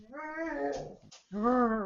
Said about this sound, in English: Sorry. It's just a cat.